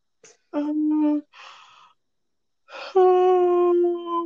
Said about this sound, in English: Oh, I'm already yawning. It's only 3:30.